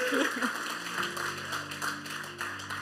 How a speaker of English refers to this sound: Heck yeah. Let's clap again. Yes. Yes.